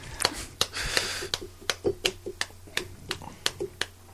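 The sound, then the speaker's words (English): A hand slaps a bag in a series of sharp, irregular slaps, about a dozen quick smacks with uneven gaps, some louder than others, with a low steady hum underneath. “You slapping your bag over there?”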